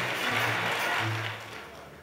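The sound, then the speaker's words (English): An audience claps their hands in a dense, steady patter of overlapping claps, saying "poverty, get out," with voices calling out underneath, and the clapping slowly fades near the end. “Clap your hands and say, poverty, get out.”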